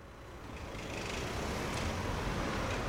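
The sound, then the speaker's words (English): Steady road traffic at a bus stop on St. Anne's Road, a broad rumbling wash of passing cars and heavier vehicles that swells slightly and holds, with no one talking. “Right, so we begin our adventure, as we often do, at stop HK on St. Anne's Road, waiting for a bus.”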